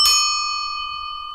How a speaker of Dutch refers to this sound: Dus ik heb mijn bel vervangen door de hallo bel. Namelijk deze.